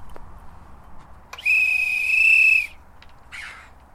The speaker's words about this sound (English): So the whistle? Yes. That lets them know it's feeding time. Exactly, yes. You know, when they're out and about, they can sort of, it's more audible for them from further away, so that they know to come.